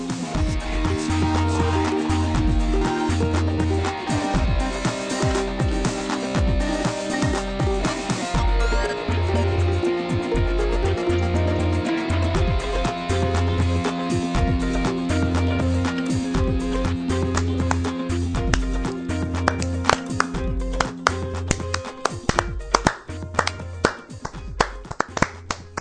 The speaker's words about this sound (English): Going for the 80s slow clap thing.